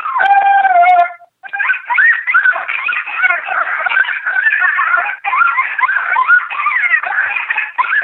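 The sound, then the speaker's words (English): A couple of sub-adult coyote pups, recorded in Wyoming, howl: one long wavering note, a brief pause, then several overlapping high yips and warbling howls keep going in an unbroken chorus. “That's a couple pups that are just sounding off, and I, you know, they could be, they're sub-adult.”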